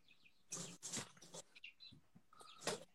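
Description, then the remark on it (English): Faint, high-pitched bird chirps and short tweets come in scattered bursts over a few seconds, mixed with brief rustling noise, with no one speaking. “I hear birds chirping.”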